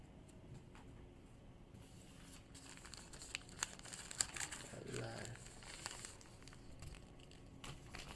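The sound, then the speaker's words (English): Quiet plastic crinkling and rustling from a plastic comic book bag holding three comic books, with irregular small crackles and a few sharper snaps, low in volume throughout. “You put 3 comic books in 1 plastic bag just to save room.”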